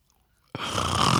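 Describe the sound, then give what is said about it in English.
After a brief hush, a loud, rasping snore kicks in abruptly and holds steady, a single long, rough breath with no talking. “are you snoring during our show?”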